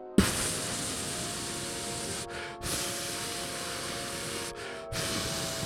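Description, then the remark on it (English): A long, hissing silent fart: a steady, airy hiss that runs for several seconds, fairly loud, briefly thinning out twice before resuming. No one speaks. “That's the longest silent fart I've ever heard.”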